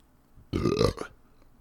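A single loud, close human burp lasting about half a second, a low rumbling belch with a rising tone, heard on its own with no talking.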